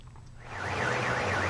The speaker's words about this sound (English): A cacophony of car alarms and flashing lights. On Sunday, the heavy rains in northern Taiwan flooded a car park next to the river near Biling Bridge in Taipei Shiling District. More than 100 cars were affected in the surge.